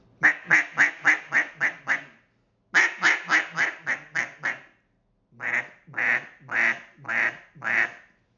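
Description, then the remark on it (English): A duck call blown in three runs of loud, deep hen quacks imitating a fuller boss hen: two quick descending sequences of about seven quacks each, then a slower series of six fuller, drawn-out quacks, alone. “Just got deeper. It's that more fuller hen. It's just that boss hen.”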